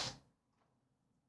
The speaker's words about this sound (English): Oh, bless you.